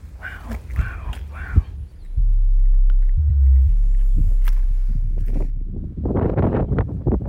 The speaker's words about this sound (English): So we're out here right on the edge of the vineyard, and you can really hear the wind, how it's picked up. It's almost howling across the vineyards at times, and the ocean is breaking in the background. It's really a stunning landscape.